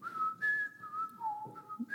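A person whistles a short game show theme tune, a clear, steady melody of held and gliding notes with brief breath gaps, and no talking.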